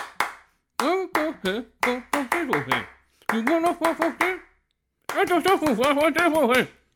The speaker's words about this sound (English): I'm talking in claps right now. Want me to keep talking in these claps? I will keep talking in claps if you want me to keep talking like this in claps.